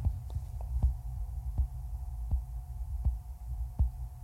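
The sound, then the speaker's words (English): Crisp mechanical ticking from a person's heart, whose aortic valve was replaced in open heart surgery in August 2009, about six sharp clicks at a steady rhythm roughly every three-quarters of a second, over a low, constant rumbling hum. No one speaks. “So that ticking noise is my heart.”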